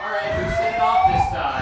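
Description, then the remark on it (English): A steady, piercing electronic fire alarm tone sounds continuously at a hotel, with faint background voices and rumble underneath. “Apparently we have a fire alarm here at the hotel.”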